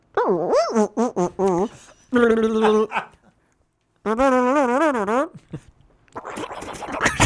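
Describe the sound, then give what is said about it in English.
A single voice runs through a quick Michael Winslow-style montage of imitated sound effects: warbling, swooping pitched cries, a wavering sustained tone, then a breathy, noisy rasp at the end attempting a helicopter. “Do your best Michael Winslow sound effect montage right now”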